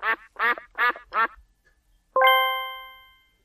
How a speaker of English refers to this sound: Your reindeer is enjoying playing with the rubber duck. Oh, yeah. Nice bit of sound effects.